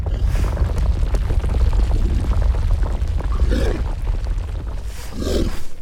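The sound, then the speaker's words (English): Deep, heavy breathing of a rock giant in a cavern, with a low rumbling roar, swelling in slow, drawn-out breaths over a constant dense low drone, like a huge creature sighing. “That sounds like... breathing.”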